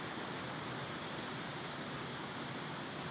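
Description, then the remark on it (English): A steady, dense hiss of heavy rain pours down without a break, a broad, even wash of noise with no voices over it. “It just started like severely raining here.”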